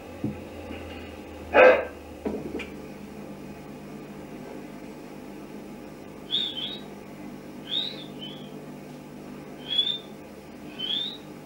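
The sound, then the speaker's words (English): A single sharp dog bark, with a softer second yap just after, followed by a series of short, high, rising whistles spaced a second or two apart against a quiet background hum. “At first, he was met with the response of a dog bark and whistling before the voice first made itself heard.”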